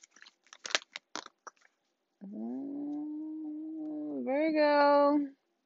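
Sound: shuffling tarot cards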